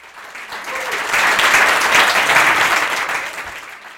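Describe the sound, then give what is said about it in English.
An audience at a storytelling night breaks into steady applause mixed with finger snaps for six storytellers: a dense, crackling wash of many hands that swells after the first second, holds loud, then tapers off slightly toward the end. “Let's give it up for all six of our storytellers tonight. Snaps and claps.”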